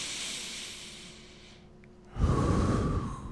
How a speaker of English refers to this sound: Like to just breathe into my diaphragm, probably every yeah, day. Yeah, it's still like it I have to actually like do it.